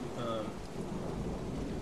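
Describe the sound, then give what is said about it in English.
Steady, dense rainfall pours down beneath a low, rolling rumble of thunder, forming a continuous stormy wash of sound with no voices present. “rain has wet the grip so much that as she swings at Elwita, she drops her fucking sword.”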